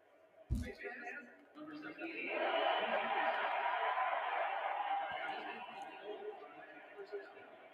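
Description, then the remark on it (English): A large stadium crowd at an American football game bursts into a sustained roar of cheering after a face mask penalty on Bell gives Denver a first down. The cheering swells after a brief thump and stays loud and dense until the end, with murmured voices beneath it. “Man, the crowd loves that call.”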